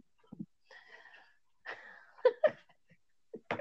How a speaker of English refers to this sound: Talk about me coughing.